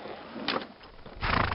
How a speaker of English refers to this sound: Is that horse drunk? It's just a little buzzed.